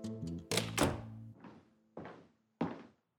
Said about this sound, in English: You wanted to speak to me, Chief? Close the door